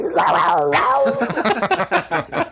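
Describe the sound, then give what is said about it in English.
A man's voice imitates a cat's cry, a drawn-out, wavering yowl that slides up and down in pitch, then breaks into a rapid series of short choppy bursts toward the end, loud. “been practicing that ever since he went to WSU. Yeah. The cat.”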